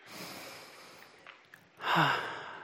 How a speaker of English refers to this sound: And so now I invite you, if it feels comfortable, to go ahead and close your eyes. Take a nice deep breath.